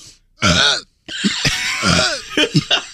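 A person deliberately makes a forced, throaty burp after a sharp intake of breath, then a longer strained belch with gulping bursts, loud with no talking.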